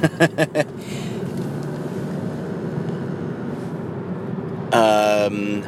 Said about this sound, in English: Sorry, I'm in traffic.